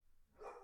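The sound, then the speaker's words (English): A dog gives a single short bark, fairly faint, after a brief moment of quiet background noise, with no talking. “Sorry, that's my dog.”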